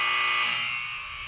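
A single loud, harsh electronic buzzer ends a timed trivia quiz round, blaring for over a second, a steady raspy tone that fades slightly toward the end, like a game show's time-up signal, with no talking over it.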